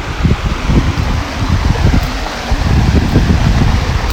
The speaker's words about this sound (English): But listen to that, the sound of running water. You can't beat it, can you?